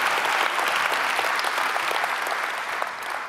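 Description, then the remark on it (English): An audience applauds steadily during a sermon about Jesus, a dense wash of many hands clapping at an even loudness that fades slightly toward the end, with no talking over it. “And that's a pretty good place for you to applaud right there.”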